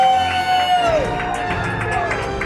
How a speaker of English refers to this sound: Ladies and gentlemen, a round of applause for the man, the myth, the legend, Elvis motherfucking Duran!